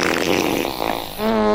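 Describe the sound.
A fart noise: a rough, sputtering blurt that settles into a steady, buzzy, low-pitched tone for its final moments. It is loud, with no one talking.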